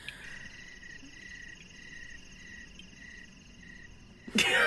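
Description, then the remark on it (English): Crickets chirping in a steady, pulsing trill with no one talking, a quiet nighttime ambience that cuts off abruptly into a short loud burst of noise at the end. “You know what? Crickets.”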